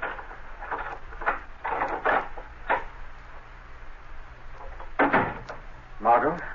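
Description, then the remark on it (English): A key jingles and clicks in the lock of an apartment door, a few short metallic rattles, then the latch turns and the door swings open with a couple of louder thumps. “Now, shortly afterward, Margot Lane is unlocking the door to her apartment.”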